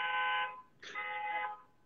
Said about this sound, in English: Sorry, there's a car alarm.